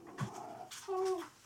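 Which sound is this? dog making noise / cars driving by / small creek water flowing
dog making noise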